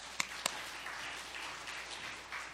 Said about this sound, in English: We don't clap enough for the people in the sound booth. It can be a thankless job, but y'all are doing great. Thank you.